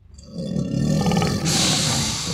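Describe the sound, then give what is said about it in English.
A loud, deep monstrous roar from hybrid animal monsters, genetic monstrosities such as half-cat, half-deer, half-pig and half-turtle creatures and a jackalope, builds and growls with a rough, rumbling texture as they rush at park patrons; a harsh noisy hiss bursts in midway, the bellowing continuing underneath. “genetic monstrosities roar into action.”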